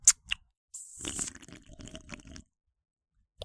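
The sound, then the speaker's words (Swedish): Wet chewing and lip smacking during a taste test of a blood-orange-flavoured drink, opening with a couple of sharp crunchy clicks, then a busy stretch of smacking mouth sounds for about two seconds before a brief pause and one last smack. “Ja, ni får med på smaktest här nu. Smaska ännu mer.”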